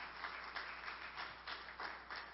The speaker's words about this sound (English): Would you give him a round of applause as he makes his way up here?